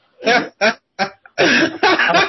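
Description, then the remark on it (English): A man gives a deliberate, exaggerated cough while holding his hand out palm up: three short, loud bursts in quick succession, then a longer, rougher hacking cough. No one speaks. “He kind of coughs and holds his hand out with his palm up a little bit.”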